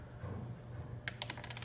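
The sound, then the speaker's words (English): Dice clatter on a hard tabletop in a quick burst of sharp clicks and rattles as a D8 is rolled for hit points, clear over a low background hum, settling after about half a second. “So it's a D8 per level, so we're doing this 3 times.”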